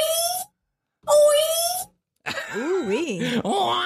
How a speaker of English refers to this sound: I'm going to go orgasm. That is an orgasm. Okay. That is correct. That is an orgasm. That is actually a man.